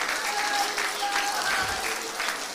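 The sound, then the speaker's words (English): A seated church audience clapping their hands in praise to God, a dense, steady wash of applause that stays loud throughout, with faint voices murmuring underneath. “But with a hand clap of praise and you as you're seated, just begin to thank Him for what you feel right now.”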